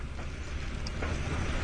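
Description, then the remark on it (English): A boat's engine rumbles steadily on a river, a continuous low, droning noise with a broad wash of hiss. It stays fairly loud and even throughout, with no voices. “And here is the boat. Right on time.”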